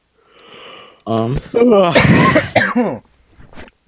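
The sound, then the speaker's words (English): A man coughs and clears his throat: a soft breathy lead-in, then about two seconds of loud, rough, voiced hacking bursts that trail off into a faint sniff. “So I have a little bit of a cold right now. You guys got one man yawning and one man coughing.”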